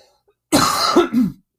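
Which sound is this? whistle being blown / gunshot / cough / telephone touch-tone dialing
cough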